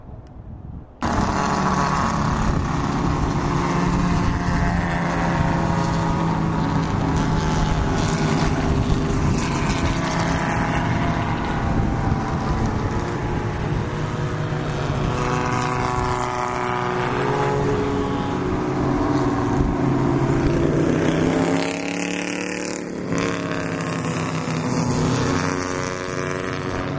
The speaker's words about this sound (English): You heard it that time. That's one by one as they follow a pace car around, so hopefully the track's already cleared up and they can continue the race